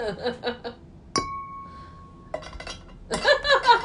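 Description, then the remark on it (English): A single sharp tink of glass or metal rings out with a clear, steady tone that sustains for about a second, framed by voices and laughter before and after. “That's glass, and this is metal, so this would be more like what it actually sounds like.”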